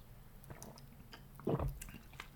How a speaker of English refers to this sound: Hold on a second. Give me a little sip of my water.